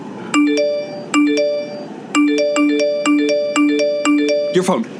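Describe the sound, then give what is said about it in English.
A bright electronic phone ringtone plays a repeating melodic chime pattern, clear, cycling several times before cutting off abruptly with a brief clatter at the end. “Your phone! It's connected!”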